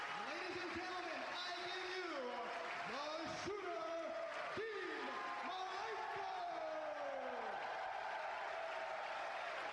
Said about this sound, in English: This crowd's loud. You can't. I cannot understand what Joey Styles is trying to get out. Yeah, they're fucking loud as fuck.